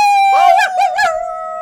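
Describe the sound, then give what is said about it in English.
People howl like wolves at the moon, a loud sustained wavering cry that rises and falls in pitch before holding steady at the end, alone without any talking. “Just end it on howling at the moon, like usual.”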